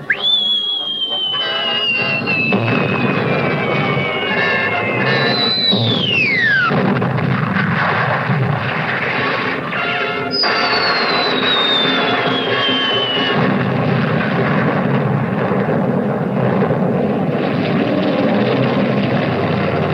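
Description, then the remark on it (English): Several high whistling tones of artillery shells glide downward in pitch, one dropping sharply, over a constant loud roar of rumbling, crackling battle noise with bombs bursting everywhere. “Bombs busted everywhere. And shells was a-whistling through the air, like this.”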